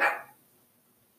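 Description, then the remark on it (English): A single short bark from the speaker's sister's dog rings out, slightly muffled, from outside, then fades into near silence with no voices. “Don't mind my sister's dog out there.”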